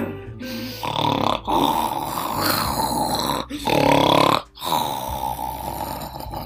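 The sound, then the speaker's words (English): Loud, rasping snores repeat from someone lying on a bench, several long rough breaths broken by brief pauses, with no talking around them. “Baba Yaga lay down on a bench and began to snore so loudly that the whole forest trembled and shook”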